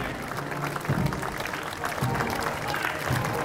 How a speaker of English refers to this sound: Applause continuing as the last of the people in the parade come around now. There's still a few more of them left.